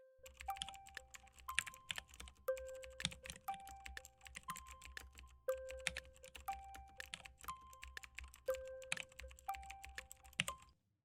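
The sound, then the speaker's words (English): Fast, steady typing on a computer keyboard, a dense run of crisp clicky keystrokes with brief pauses, alongside repeating electronic beep tones and a low background hum. “A good sounding keyboard too, by the way. This is a great sounding keyboard.”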